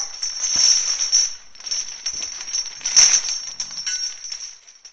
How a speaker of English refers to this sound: Didn't sound like a door to me. No, that was the chains.